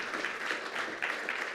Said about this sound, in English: Hey, Coastline, how you guys doing today? Come on, let's put our hands together and give Jesus Christ the greatest applause that we can possibly give today.